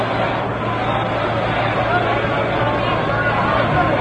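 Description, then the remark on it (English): A steady, dense crowd roar fills the whole stretch, a constant wash of babble and chatter with no breaks: the packed crowd at Ebbets Field, home of the Brooklyn Dodgers, during a game against the Yankees with the Dodgers leading 3-1. “The crowd is noisy because the Dodgers are leading 3-1, and this is the home of the Dodgers, Ebbets Field.”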